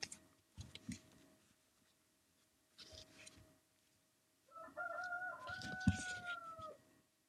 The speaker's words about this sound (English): Can y'all still hear my rooster crow? Oh, man. I'm sorry, guys. I don't think we're getting rid of that rooster crow. I really don't. Like, got all this good equipment, and the rooster still sits right there by the steps crowing.